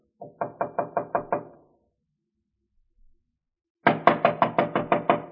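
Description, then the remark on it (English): A quick burst of about six sharp knocks on a dressing room door, a pause of silence, then a second, louder and more insistent round of rapid knocking, with no voices. “Well, here's my room. I saw Betty come in about a half hour ago. Wait, I'll knock.”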